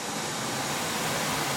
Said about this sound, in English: This isn't just a steady trickle. This is a roaring stream. It's announcing to anybody within earshot that there is life, there is nourishment, there is restoration for the weary right here.